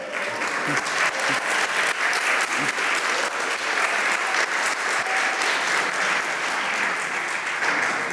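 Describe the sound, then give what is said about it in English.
A crowd at a Sunday Father's Day gathering applauds the dads standing in the room, a dense wash of many hands clapping at an even, loud level that holds for the whole stretch without fading. “Because we just want to give you guys a round of applause.”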